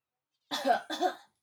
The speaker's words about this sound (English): All right, sit up straight. Breathe in. Breathe out. Cough.